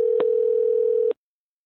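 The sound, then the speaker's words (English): A steady telephone tone of an outgoing call rings out for about a second at moderate volume, with brief clicks near the start and end, then cuts to silence. “Hold on, so I'm giving him a call.”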